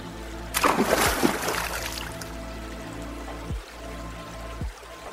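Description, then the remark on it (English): A burst of splashing water as a person slides into a calm part of a cold river, loud for about a second, then easing into a steady, gentle flow of moving water. “Slowly, you undress, slip on your water shoes, and slide into a calm part of the river.”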